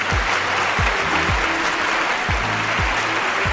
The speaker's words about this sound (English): Oh, fans, still a ravaging and raving applause, even though many moons have passed us by, but truly, time does not exist.